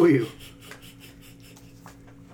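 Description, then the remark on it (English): Soft, rapid scratching of a pen moving across paper in short repeated strokes as players write down the words 'Dota Underlords' during a game, faint and steady over a low background hum, following a brief louder thump at the start. “This is why I had paper out. You guys are all going to write down this one.”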